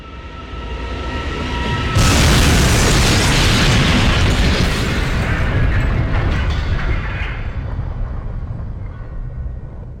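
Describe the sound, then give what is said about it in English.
A single loud explosion on a train bursts in abruptly, then rolls on as a heavy, rumbling roar that slowly fades, with a low mechanical hum audible just before the blast. “Just then, there's another explosion, and the train lurches again, throwing everyone to the floor.”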